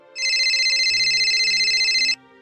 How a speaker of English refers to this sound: Are you really about to answer a phone call like